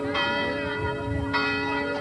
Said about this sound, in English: There goes the church bell. We're walking by one of the largest churches in town.